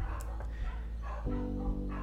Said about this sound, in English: That's the neighborhood dogs.